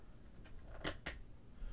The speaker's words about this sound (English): We'll go ahead and disconnect it. And we will actually put this one in the drawer.